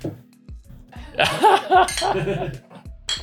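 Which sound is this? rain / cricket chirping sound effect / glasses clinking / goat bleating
glasses clinking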